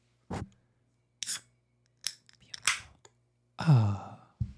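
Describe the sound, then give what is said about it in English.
Several sharp metallic clicks and snaps as the tab of a can of amber ale, taken from a mini fridge, is worked, followed by a louder pop and a short rushing fizz that fades out. No one speaks. “I believe I will pop the tab this time.”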